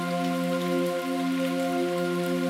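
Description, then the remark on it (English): Steady rain patters continuously outside a window, a dense even hiss of drops with no pauses, layered over a constant low humming drone. No one speaks. “Even just the rain falling outside your window is a big production.”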